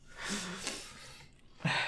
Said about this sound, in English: I've been crying. Yeah, I know. I can hear the sniffles, and every time I'm like, "Oh, me too, bud."